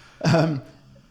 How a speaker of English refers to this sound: sorry, if you can hear the labored breathing, that's Brie.